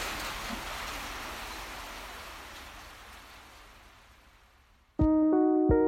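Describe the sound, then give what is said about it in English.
A dense, steady hiss of heavy monsoon rain pours down from low clouds under dark gray skies, slowly fading over several seconds before a loud sustained tonal chord abruptly cuts in at the end. “Visually, it's dark, dark gray skies with lots of thunder sometimes, and it's like living in one big cloud, even though we're not on a hill, because the clouds are so low and they're really opening up to a lot of rain.”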